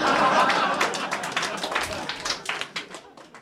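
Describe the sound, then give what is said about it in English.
An audience applauds after a joke, starting as a dense, steady wash of many hands clapping, then thinning out into scattered individual claps as it fades over a few seconds. “Thank you for applauding.”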